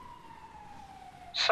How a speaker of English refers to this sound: He then heard the sound of ambulance sirens out the front.